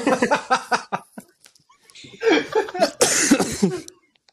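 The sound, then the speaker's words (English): Loud coughing right into a microphone: a rapid run of harsh coughs, a short pause, then a second raspy, breathy burst of hacking that trails off. “Decent coughing into the mic there”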